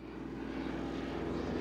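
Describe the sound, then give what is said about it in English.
The propeller engine of a fixed-wing DC-3 airplane built in the 1930s drones steadily, a low throbbing hum with a buzzy harmonic layer that holds even and fairly loud throughout, with no voices. “fixed-wing, propeller-driven DC-3 through a company called Gopher Aviation that had been built in the 1930s.”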